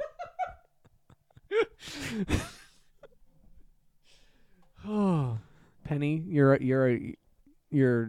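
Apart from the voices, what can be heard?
sneeze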